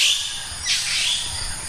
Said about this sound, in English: You wake up in the morning hearing the kindness of birds, as what Merlinda Bobbitt would describe.